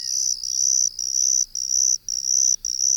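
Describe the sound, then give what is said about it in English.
A confused ground cricket trills steadily and loudly, its high buzzing song broken by brief pauses into repeated two-part phrases, with no other sounds present. “It's small, about a third of an inch long, and cold-hardy, and you'd find it hard to confuse its song with the two-part trills of this one.”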